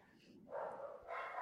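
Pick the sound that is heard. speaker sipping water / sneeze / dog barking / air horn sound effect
dog barking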